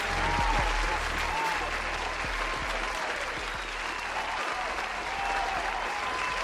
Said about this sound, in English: Oh, thank you. Thank you. Look at y'all. Thank you. Oh, such a great round of applause. All this for me?